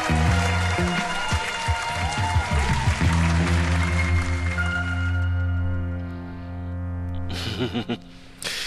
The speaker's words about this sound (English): Thank you. Matter of fact, some more applause.